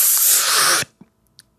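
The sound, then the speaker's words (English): A voice makes a loud, forceful hissing breath in imitation of total concentration breathing, one bright sustained exhale that cuts off sharply, followed by two faint soft clicks in the quiet. “Total concentration breathing.”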